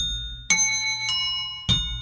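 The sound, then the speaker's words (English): Three bright bell strikes ring out at roughly half-second intervals, each with a sharp attack and a sustained metallic tone, as game bells used to ring in and guess a song are tapped in turn, fairly loud. “flat bell over there, but. That's how you'll ring in and try to guess the song that is not country.”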